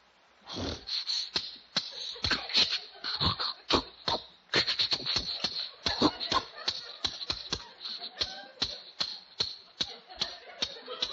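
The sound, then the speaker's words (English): A boat engine at a pier, being tried again, sputters with irregular bursts, then settles into a steady, even putt-putt chugging that runs without pause. There is no talking. “Oh, listen to that engine purr.”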